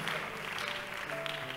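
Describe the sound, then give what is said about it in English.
An audience claps in a dense, steady wash of many hands, lasting under two seconds without a break, with faint sustained musical tones humming underneath. No one speaks. “We're clapping, we're child of God.”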